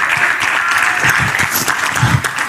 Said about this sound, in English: Come on, clap your hands.